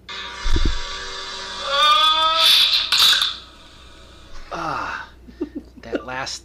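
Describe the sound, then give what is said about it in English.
A strained, rising scream of about two seconds, then a falling groan-like cry, followed by a few short, sharp cracking snaps of a neck breaking at the end. “you're gonna hear … scream first, and then you're gonna hear the sound of his neck breaking.”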